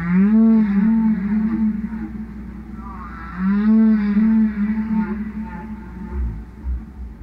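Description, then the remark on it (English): Loud, sustained recorded whale song blasted over loudspeakers by Greenpeace activists at whalers, with long, sweeping tonal moans that rise and bend, repeating in two drawn-out phrases over a low rumbling background, with no one speaking. “they're blasting Roger's whale record.”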